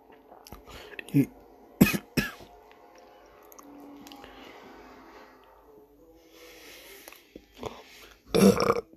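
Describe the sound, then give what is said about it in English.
A loud burp near the end, preceded by a few short throaty bursts and a stretch of quiet murmuring background sound. “don't burp.”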